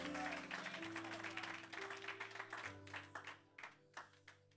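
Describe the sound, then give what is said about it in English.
A crowd claps hands for Jesus in dense, loud applause that thins into separate scattered claps toward the end, over steady sustained low organ-like tones. “Clap your hands for Jesus if you can.”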